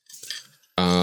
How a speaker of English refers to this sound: I'm going to just make a bunch of dice noises this whole time. That sounds horrible. Because they're in a glass jar.